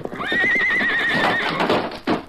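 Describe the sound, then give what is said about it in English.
The Lone Ranger's horse Silver, ordered to break down a door, lets out a loud, shrill whinny that wavers in pitch for about a second before trailing off, followed by clattering hoof and impact noises. “That's fine, boy. Steady there.”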